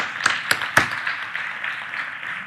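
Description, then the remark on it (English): Three sharp, evenly spaced claps ring out, then blend into a steady, moderately loud wash of church audience applause for families headed by mothers alone, continuing without any talking. “Let's not give them a golf clap. Let's give them a real applause.”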